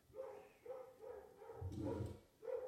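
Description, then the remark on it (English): A dog barks repeatedly in a steady run of five or so rough, fairly muffled barks, with no voices over it. “Fucking dogs. Somebody must be walking by. Yeah, somebody with a dog.”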